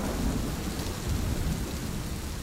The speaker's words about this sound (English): Now, I know it seems like it just started raining in the studio, but that was in fact accomplished by a simple rain stick held up to a microphone.